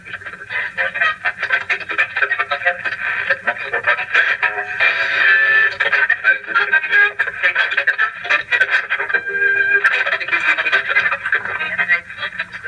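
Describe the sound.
An old clock radio, inherited from the parents and kept in a child's bedroom, plays on its own at night, its dial indicator moving from one side to the other, giving off a thin, tinny, band-limited stream of muffled voices and crackle that runs steadily for about twelve seconds.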